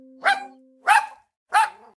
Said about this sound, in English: If you guessed el perro, or dog in Spanish, you're correct.